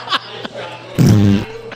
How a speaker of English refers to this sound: Hit that flatulent CD. So now we have to talk over farts.